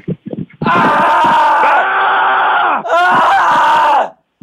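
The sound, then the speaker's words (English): Two people let out a loud, sustained scream together to seal a promise, then break off briefly before a second long scream trails away. A few short voiced sounds come just before. “You screamed that one less loud.”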